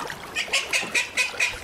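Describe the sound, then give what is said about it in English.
A duck near a rowboat quacks in a quick, steady series of about six sharp, nasal calls, with no voices in the background. “It seems we've attracted a duck.”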